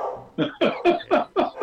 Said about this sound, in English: The dog agrees with it anyway. Oh, he's just, yeah.